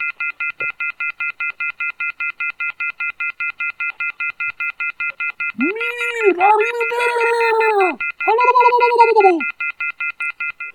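A telephone rings with a steady, rapid electronic trill that runs from start to finish, loud, while a drawn-out vocal sound rises over it partway through.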